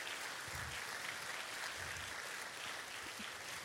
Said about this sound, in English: Would you just pray, give these groups a big round of applause for coming today.